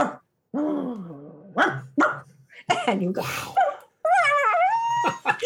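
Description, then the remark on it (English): A person's voice mimics a dog, making a run of fairly loud yips, barks and high whimpering whines, with short gaps and a few brief spoken words between. “I couldn't figure out where this dog was coming from, and I went barking.”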